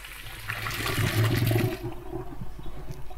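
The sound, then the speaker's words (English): Hot pasta water poured through a colander into a sink to drain the pasta, a loud rushing gush for about a second and a half that thins out into scattered drips and trickles. “So the rest can go in the sink through the colander.”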